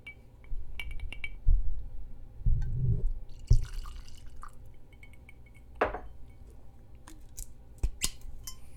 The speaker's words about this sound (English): I've let it sit for a little bit. I've opened it. It's opened up a little bit. I like it a lot better. So let's pop it for you. And this beautiful thing here comes in at 121 proof.